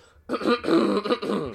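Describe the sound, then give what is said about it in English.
A person clears their throat with a rough, guttural rasp and a small cough, fairly loud, lasting just over a second with no talking. “I'm getting a little cough, sorry.”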